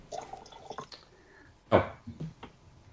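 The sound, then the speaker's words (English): Wine glugs and trickles out of a bottle into a glass, coming in short uneven splashes with one louder gush partway through, heard on its own without any talking. “I doubt I will, though, as I pour more.”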